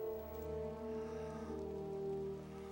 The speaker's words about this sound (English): I like the feeling that the rain brings here. Oh, it's very sad. The world is crying in a sense for the event that takes place. But again, another difficult thing for the effects team.